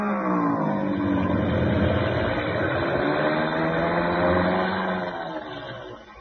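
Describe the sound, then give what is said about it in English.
A propeller airplane with a troublesome engine drones loudly and steadily as it comes in fast to land, its pitch wavering slightly before the sound eases off a little at the end. No one speaks. “Engine been acting up.”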